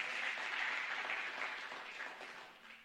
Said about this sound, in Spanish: Oh, dale un aplauso al Señor.